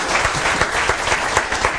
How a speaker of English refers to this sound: And no, that wasn't a really crowd track that we played. There is actually live people in here. Just give Chris KP a big round of applause, please. That's very sweet of you.